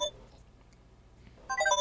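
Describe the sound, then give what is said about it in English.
A mobile phone ringtone for an incoming call chimes in bright melodic tones, a short burst at the start then returning louder near the end, with a low hum underneath. “this is Jack calling me up right now”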